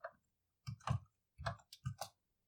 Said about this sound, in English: Well, I guess I'm happy to roll 13 dice.